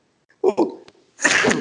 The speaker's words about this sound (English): excuse me, I just had a sneeze there. Bless you.